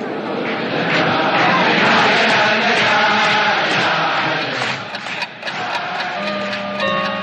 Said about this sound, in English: Look, as Dr. Weiss is entering the shul ahead of the Rebbe, he's being greeted by clapping and cheers for his work, dedication, menschlichkeit, and love for the Rebbe.